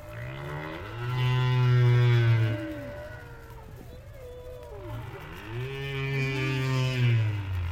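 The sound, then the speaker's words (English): Two long, moaning humpback whale calls, rich in harmonics, sliding up and down in pitch and separated by a quieter pause, with a faint underwater hiss beneath. The whales are singing at Argus Bank, about 30 miles off the coast of Bermuda, where they gather and sing through the night. “About 30 miles off the coast of Bermuda, humpback whales gather at Argus Bank.”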